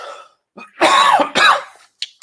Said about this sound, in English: I need to take a drink. I'm about to cough.